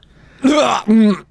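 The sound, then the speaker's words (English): Two loud, throaty coughs in quick succession, each with a raspy, voiced rumble and a short pause between them. “you got a cough over there? Yeah, I got a cough.”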